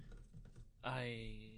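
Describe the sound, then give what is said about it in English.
Quick, irregular clicks of typing on a computer keyboard for under a second, then a steady, sustained humming tone takes over and the keystrokes stop. “Yeah, you're like typing shit away.”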